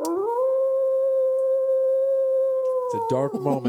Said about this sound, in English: Oh my God, there's a wolf. There's a wolf outside.